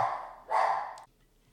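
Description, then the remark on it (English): Two quick, loud barks from a small pet dog, one of two dogs named Jack and Harley, the second bark slightly stronger, then quiet. No one speaks. “Sorry, sometimes my little assistants, Jack and Harley, they like to bark.”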